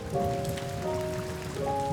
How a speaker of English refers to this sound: And the rains would come.